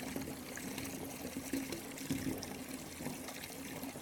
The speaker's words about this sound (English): Your head rests on a soft towel while you listen to the gentle sounds of running water. As your hands glide through the water, feel its gentle touch.